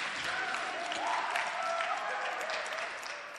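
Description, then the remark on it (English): An audience at a church service claps together in a dense, steady burst of applause that holds for a few seconds, with faint voices and cheers mixed into the clapping. “Clap for him.”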